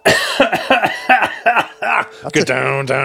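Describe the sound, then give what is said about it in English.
A loud bout of wet coughing, about eight rapid hacking coughs in quick succession, trailing into a strained, drawn-out voiced sound at the end. “We don't usually have a wet cough in the show right there.”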